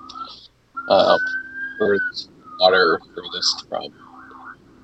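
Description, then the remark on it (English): A siren wails in the background, a thin tone rising and falling under people talking. It stays fairly faint beneath the voices. “The slums because there's medieval sirens in the background.”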